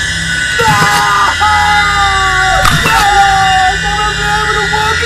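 A man, restrained on a table by an alien, screams in loud, drawn-out, strained cries, with a couple of sharp bursts breaking in partway through.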